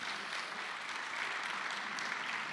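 Steady audience applause, a dense patter of many hands clapping at an even level throughout, with no voices standing out.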